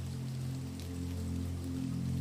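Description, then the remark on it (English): Steady rain patters continuously, dripping down a gutter and drumming on the thatched roof of a stone cottage, a dense even hiss of drops with a low, constant hum underneath and no voices. “As the rain drips down the gutter and begins to pool and form a tiny pond, the wind howls through the trees, and the rain drums against the thatched roof with a steady”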